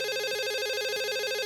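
A telephone rings with a steady, buzzing electronic trill that fills the short moment on its own, even in loudness, with no voices present.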